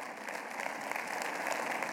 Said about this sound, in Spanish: Un aplauso al Señor.